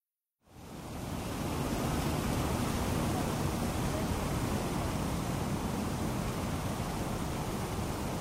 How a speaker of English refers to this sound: I'm at the 9/11 Memorial at Ground Zero in Lower Manhattan. You can hear the water rushing into the voids where the towers once stood.